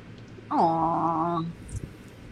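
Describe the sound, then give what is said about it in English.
A single drawn-out meow from a cat cuddling with a kitten, about a second long, fairly loud with a steady, slightly whiny tone, followed by quiet room noise and a faint soft rustle. “My kitten and my cat are cuddling for the first time ever.”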